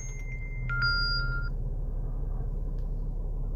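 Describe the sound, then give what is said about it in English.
A short electronic text message alert from a cell phone inside a vehicle chimes twice in quick succession, bright steady tones over a low hum, then fades to quiet background noise with no one speaking. “I'm getting a text on my phone.”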